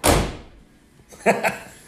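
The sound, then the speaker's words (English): A vehicle door slams shut with a loud, heavy thud that rings out and fades, followed about a second later by two softer, brief knocks. “So you've got to identify what type of vehicle this is when you hear the door close.”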